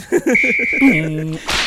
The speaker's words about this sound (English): but we hit him with the ref whistle.